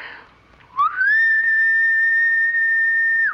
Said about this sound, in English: Good. Now, whenever you're in danger, you whistle just like that and I'll be here.